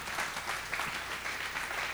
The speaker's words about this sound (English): And give Jesus a clap in the house.